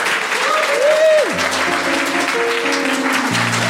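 An audience of the show Global Pillage applauds its comedians in a steady, dense wash of clapping that lasts the whole clip, with a few sustained musical tones and a sliding pitch sounding over it.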